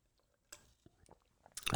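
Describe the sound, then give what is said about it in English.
Someone takes a sip of water: a few faint, scattered mouth clicks and a soft slurp, then a louder, breathy swallowing burst at the end. No one speaks. “So I'm just going to get a drink of water here for a second.”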